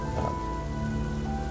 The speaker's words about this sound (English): And the rain continues to pour down.